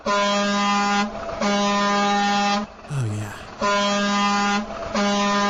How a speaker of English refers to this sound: Are we gonna sign off with a nice trucker horn? Are we done our trucker topics? Oh, we can transition to another topic with the trucker horn.